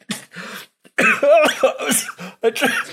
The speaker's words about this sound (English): Just finish coughing. Oh, I'm coughing so hard it's gonna give me the hiccups too. I drown myself. I was taking a drink and somehow I breathed in just the tiniest bit.